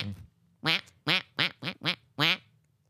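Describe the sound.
A person's voice imitates a duck, giving six nasal quacks in a quick, uneven rhythm, fairly loud, with short silences between them and no talking.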